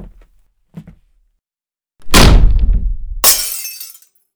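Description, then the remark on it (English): A few faint knocks, then a heavy booming thud as a front door is slammed, followed a second later by a small heirloom mirror dropping off the wall and shattering on the floor with a bright, glassy spray that fades out. “My dad slammed the front door so hard behind him that the small heirloom mirror on the wall next to the frame dropped off and shattered when it hit the floor”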